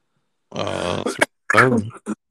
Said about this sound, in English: excuse me. Gesundheit.